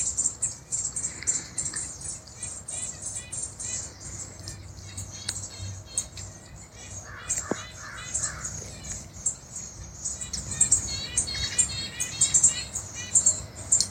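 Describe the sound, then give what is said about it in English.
Birds chirp and twitter continuously, a busy chorus of high, rapid calls layered over one another, with a few clearer whistled notes standing out near the middle, all steady throughout. “In the beautiful sounds of the bird relations.”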